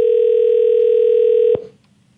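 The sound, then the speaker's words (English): A steady, loud telephone dial tone hums for about a second and a half, then cuts off abruptly with a click and fades into quiet, as a host at radio station X92.9 places a call to wish a listener a happy birthday. No one speaks. “She's a big fan of the show, and she was wondering if I could call her up and wish her a happy birthday.”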